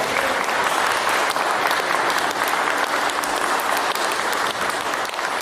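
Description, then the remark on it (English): A concert audience applauds Chris Powell, a dense wash of many hands clapping at a constant, fairly loud level throughout, with no voices standing out above it. “Ladies and gentlemen, another round of applause for Chris Powell.”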